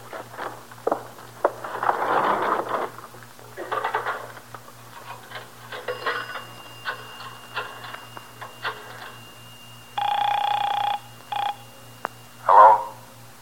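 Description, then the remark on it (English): A telephone being dialed in a phone booth: clicks and shuffling lead up to a steady burst of dialing tones, then a brief tone near the end, fairly clear with no talking. “You got a phone here? In the back there, a booth.”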